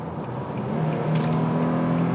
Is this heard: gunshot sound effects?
no